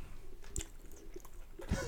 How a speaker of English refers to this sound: You gonna chew into the mic or are you gonna say something?